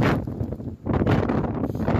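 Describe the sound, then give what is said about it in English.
Strong mountain wind buffets the microphone in loud, continuous low-frequency roaring gusts of maybe 50 to 60 miles an hour, with a brief dip before battering back in at full force, at the top of the main basin tow bar at Glencoe after ski touring up. “it was super windy, as you'll hear from this clip”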